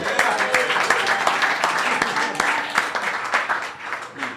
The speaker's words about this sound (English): Yeah, second round of applause. Oh, yeah. My God. And furthermore, no, I just love the applause. It's so cool.